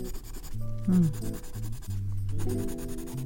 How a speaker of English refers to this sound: And now let's color. I'm going to grab my big, brightest, yellowest colored pencil and start coloring in these petals.